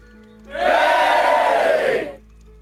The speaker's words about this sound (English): Wait, they always cheer on command?